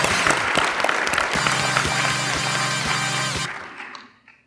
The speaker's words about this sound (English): All right. All right. Everybody, round of applause